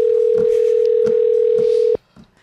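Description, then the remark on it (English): A phone line ringing on an outgoing call: one steady, loud electronic ringback tone holds for about two seconds, then cuts off abruptly, leaving faint background rustle. “Answer that phone.”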